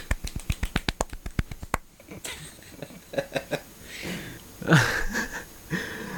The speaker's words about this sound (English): Cue applause. Golf clap? Golf clap.